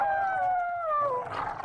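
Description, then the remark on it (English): Several wolves howl together in long, sliding tones that slowly fall in pitch, overlapping one another and fading into rougher, breathier calls at the end, with no talking. “But do you know what is down here? A pack of wolves. Cue the wolves.”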